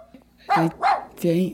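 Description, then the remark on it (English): A puppy gives three short, high-pitched barks in quick succession, fairly loud, with brief pauses between each yip. “Thank you for the puppy.”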